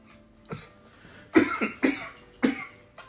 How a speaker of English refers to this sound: Smoker's cough coming back again.